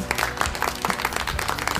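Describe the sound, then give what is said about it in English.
A burst of applause from a group, many hands clapping in a dense, irregular patter at steady moderate loudness, with no voices over it. “You deserve many, many claps!”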